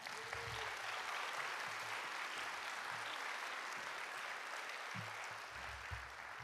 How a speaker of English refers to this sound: It has been 2 years since we've been in this space. Can we please clap for that?